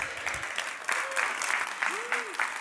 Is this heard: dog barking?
no